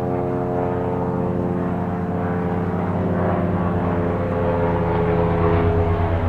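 helicopter flying overhead

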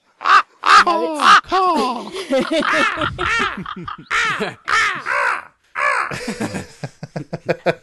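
ravens cawing

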